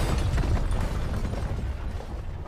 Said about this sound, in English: This helicopter just crashed into the side of here, but thanks for the donation.